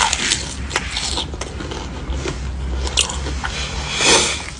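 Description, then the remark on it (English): Loud crunching as someone bites into crispy fried fish, with a series of crackly chews and crunches repeating steadily over a few seconds and no talking. “Hear that crunch?”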